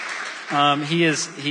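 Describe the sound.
A short burst of audience applause, a dense, even patter of clapping, quickly joined by a voice talking over it as the clapping continues underneath.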